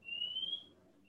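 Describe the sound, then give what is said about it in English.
A faint, high-pitched electronic alarm tone sounds, one sustained beep followed by the start of another, over a low background rumble. “Like, what alarm is that going off? That sounds like a bird.”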